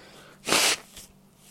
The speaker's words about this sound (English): My apologies for blowing my nose.